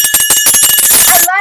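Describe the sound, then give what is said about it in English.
A small bell rings rapidly and loudly, a quick run of bright metallic dings blending into a shimmering trill before a short fading ring at the end. “Don't have my instrument, but I do have my magic bell.”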